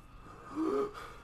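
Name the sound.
imitated gasping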